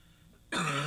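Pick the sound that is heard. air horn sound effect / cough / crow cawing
cough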